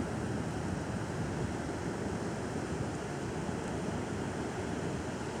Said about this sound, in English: As I sit here on the beach, the sun is beginning to set and the surfers are still out riding the waves. They're so fun to watch.